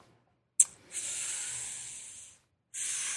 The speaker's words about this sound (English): That's not the song. That's me breathing.